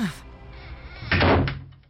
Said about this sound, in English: Now will you please stop pounding on my door?